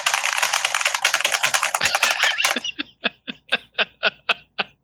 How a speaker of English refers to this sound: And afterwards, my wife was like, your keyboard is the most annoying thing I've heard in my entire life. I either have to not do my meetings in this house anymore, or just you need to not be down here.